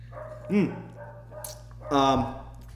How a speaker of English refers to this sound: I'm going to go grab my dog because he's barking.